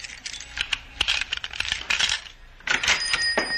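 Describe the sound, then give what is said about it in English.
Keys jingle and clink in a steady, metallic rattle lasting a few seconds as someone fumbles with them to open a door, with a brief pause before another burst of jangling. No one speaks. “Stop fumbling with those keys. Open the door.”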